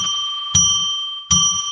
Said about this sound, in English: But let's ring that bell.